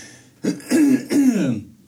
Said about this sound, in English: I am so sorry. I'm just clearing my throat like crazy on this podcast.